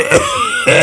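Two short throat-clearing coughs, one early and one near the end, separated by a brief pause with a faint tonal hum in between; no talking.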